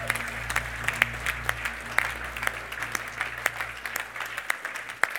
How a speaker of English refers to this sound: Do you want to clap the Lord? I think he's been doing a good thing.